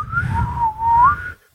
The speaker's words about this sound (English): I can't really do it. I didn't even know you could fucking whistle by blowing in, like pulling in.